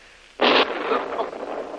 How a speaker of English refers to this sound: Where was that? That was a heavy explosion. Not far away.